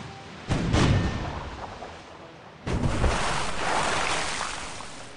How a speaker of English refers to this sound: Yes, but I look at the filigree I inscribed on the barrel. Well, that do look quite appealing. Very well. Fire the cannon, and nobody look at it.